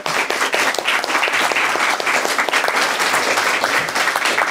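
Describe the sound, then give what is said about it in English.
A sustained round of applause from a crowd for the panelists of a discussion: dense, steady clapping at a loud, even level throughout, with no voices rising above it. “What I'd like to do is, first of all, have a round of applause for the wonderful panelists.”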